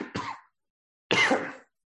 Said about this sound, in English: I'm feeling better, by the way. I'm just coughing a little bit there.